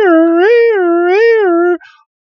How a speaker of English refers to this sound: And then all of a sudden, the sirens inside of the building start going off.